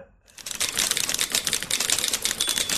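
Typewriter keys clack in a fast, dense, continuous patter, fairly loud, starting abruptly after a brief moment of quiet and carrying on without pause.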